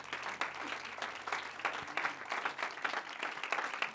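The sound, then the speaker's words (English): A church audience applauding steadily to welcome a guest speaker, dense overlapping claps sustained throughout at a moderately loud level with no clear speech. “Oh, clap your hands unto the Lord, all ye people.”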